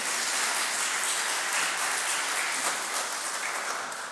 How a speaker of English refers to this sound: If you'll please rise and body, yes, that's, you can clap for that. Yes.